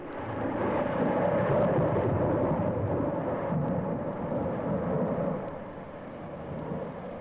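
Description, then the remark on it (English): A long, deep roll of thunder rumbles steadily for several seconds, loud and broad, then eases slightly toward the end. No voices are heard. “Thunder.”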